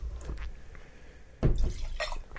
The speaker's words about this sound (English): Yeah, make sure you rinse the glass good before we go on to the next one.